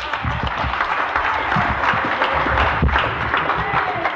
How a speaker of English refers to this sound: Give him a clap.